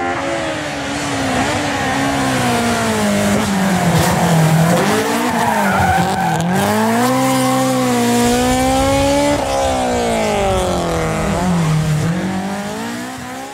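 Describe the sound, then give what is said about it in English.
A custom race car with a K24 engine, a 6-speed sequential gearbox from an old Ford supercar and a Hilux differential drives hard with tires skidding and squealing, the engine pitch rising and falling in continuous sweeps, loud throughout with no voices. “So it's got all the gear on the thing, and it's got the latest Helltech computer and dash in it, and it's gone way beyond.”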